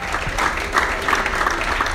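Steady applause from an audience for women who have come forward, many hands clapping densely and continuously at a fairly loud, even level, with a faint murmur of crowd noise underneath and no clear speech.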